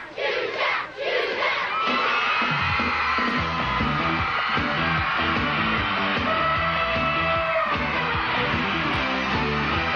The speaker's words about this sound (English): And again, the crowd goes wild.